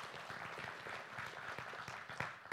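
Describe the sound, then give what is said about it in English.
A chapel audience breaks into steady applause for the more than $17,000 it gave this year to buy gifts sent around the globe, many hands clapping together in a dense, continuous patter that holds at an even level throughout, with no voices standing out. “You can clap for that, because that's you guys.”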